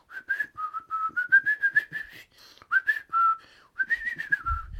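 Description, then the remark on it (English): A cartoon mouse whistles a jaunty, bouncy tune while driving a steamboat, in short, clear notes that rise and dip, with a few brief pauses between phrases. The whistling is prominent, and no one speaks. “Yeah, you know, the acclaimed thing about a mouse who's whistling along with the steamboat he's driving.”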